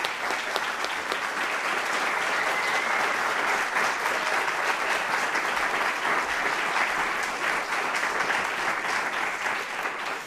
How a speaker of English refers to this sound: One more round of applause, if we please. For this.